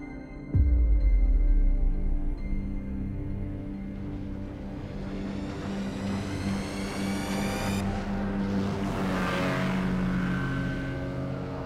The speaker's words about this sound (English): As the motorboat roars and the spray flies, the water skier squints into the Californian sun.